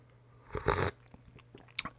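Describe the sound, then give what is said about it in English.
A single brief slurping sip of coffee from a cup held in the hand, followed by a couple of faint clicks and a soft swallow-like sound in otherwise quiet surroundings. “Do I sound older, wiser, more experienced, closer to this cup of coffee in my hand? Let me take a sip.”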